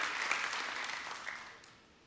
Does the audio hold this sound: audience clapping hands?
yes